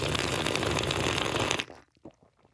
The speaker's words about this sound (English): You smell the tea. Check the color, and you're going to slurp very loud.